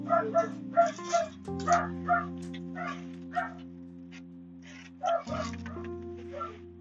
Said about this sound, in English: Okay. It's a puppy dog.